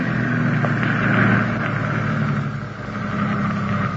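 An ambulance engine drones steadily as the vehicle turns onto a dirt road to park, a continuous low rumble with road noise that dips slightly midway, with no one speaking.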